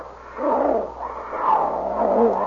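Snarling roars and growls from two wild cats fighting tooth and claw in a jungle clearing overlap in a continuous, rough, mid-pitched struggle, rising and falling in loud bursts with no pauses and no talking.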